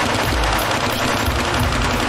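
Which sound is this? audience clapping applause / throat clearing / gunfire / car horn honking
gunfire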